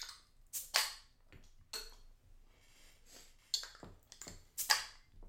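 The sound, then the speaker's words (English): Beer cans cracking open: a few sharp metallic pops, each followed by a brief fizzing hiss, spaced unevenly over several seconds with quiet handling sounds between and no talking. “But let's crack them.”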